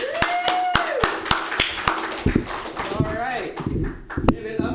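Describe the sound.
A crowd applauds with dense, overlapping claps and sharp individual smacks close by, while voices whoop and call out over the clapping throughout.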